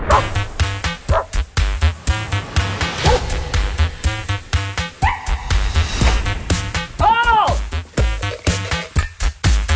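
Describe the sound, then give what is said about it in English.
A dog barks and yips in quick bursts, mixed with high, wavering whimpers and whines, fairly loud, with no one talking. “My dog, what do you care?”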